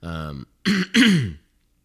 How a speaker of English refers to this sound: sorry, bear with me if I clear my throat. I am a little getting over a sinus infection.